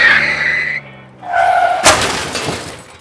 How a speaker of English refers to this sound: On our way back from Tijuana one night, we were at the US border crossing going up a ramp when my mother nodded off. The car slipped off the road until part of it was hanging off the edge.